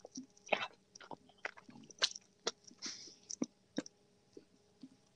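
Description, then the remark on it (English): Someone chewing crunchy chicken strips during a mukbang, with a steady run of sharp, irregular crunches and bites over about five seconds, fairly quiet with a faint background hum and no talking. “Are we both eating chicken strips?”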